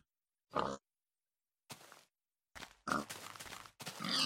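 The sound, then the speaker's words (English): A pig grunts and oinks in a series of short, snorting bursts, spaced irregularly at first and then coming in quicker succession, fairly loud with no talking. “These pigs are dry. All these pigs are dry.”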